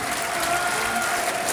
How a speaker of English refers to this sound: There's a round of applause for Bailey Bell on the big screen. Bailey Bell. Stadium applauding. Very nicely done.